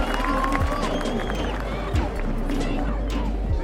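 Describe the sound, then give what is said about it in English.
A large protest crowd in a Seattle city park chants and shouts in a dense, steady roar of many voices, with sliding whistle-like calls above and a few low thumps about once a second. “There's people everywhere chanting, shouting, singing.”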